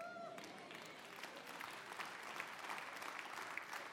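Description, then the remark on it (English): Thin, scattered applause from an audience, a steady patter of claps at a fairly low level that never swells, preceded by a brief tonal whine at the start. “That was a pathetic clap.”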